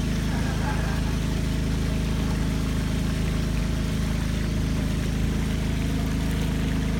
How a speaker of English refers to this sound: The other boat you saw on the other, that was a fast boat. This is not a fast boat. This is the slow boat. This is a kind of a dugout canoe. And here's how we travel.